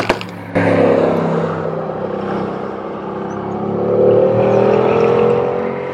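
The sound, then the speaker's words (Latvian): A safety car's engine hums steadily and grows louder as it approaches and passes on the race circuit at Barcelona, near turn 10 during a test day, its pitch rising as it accelerates, with no voices. “Nu, starp citu, šeit vēlreiz drošības mašīna.”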